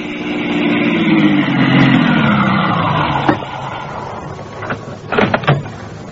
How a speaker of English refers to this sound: I stopped my car on Route 27A at about the point where Galen's men were wrecked. I got out